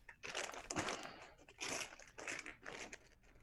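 Scooby Doo wrapping paper crinkles and tears in several rustling bursts as a gift is unwrapped, the crackly noise coming in uneven waves with brief pauses between.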